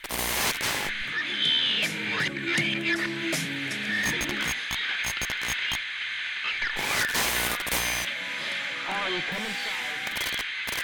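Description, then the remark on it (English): Loud, harsh walkie-talkie static, as if the radio were suddenly turned up to max volume, hisses and crackles steadily throughout at full volume, with sharp bursts and garbled, voice-like fragments breaking through the noise. “So, Deputy Payne, over your walkie-talkie, it's as if it was suddenly turned up to max volume, and there's just kind of static coming from it.”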